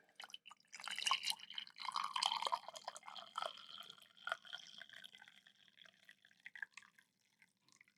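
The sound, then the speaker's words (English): Sound of Organic Breakfast coffee from Parallel 49 in Vancouver trickling and dripping into a cup, a steady stream of liquid splashes and droplets that taper off into sparse individual drips near the end. “Coffee. There you go.”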